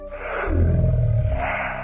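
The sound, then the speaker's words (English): A loud, deep werewolf roar, one sustained guttural bellow that swells and rumbles for about two seconds, alone with no talking. “This is no dog or no ordinary wolf. This is Lugaru.”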